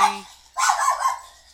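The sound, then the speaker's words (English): A dog named Oreo lets out a loud, rough burst of barking, two harsh barks running almost together, preceded by a brief faint hum. “Even a knock on the front door. It's someone else's door. Yeah. Oreo goes crazy.”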